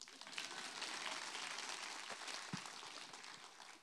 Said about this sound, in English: Okay, you see what I did there? I'm going to need you to clap.